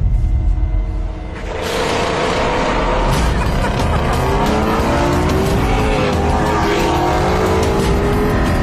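A Mustang and a Camaro ZL1 launch hard in a drag race, engines roaring loudly, with tires squealing as the revs climb and rise steadily in pitch through the gears.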